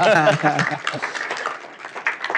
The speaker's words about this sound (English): for us, it starts with eliminating root and branch the U.S. Department of Education. Because if we succeed in doing that, yes, you ought to applaud for that.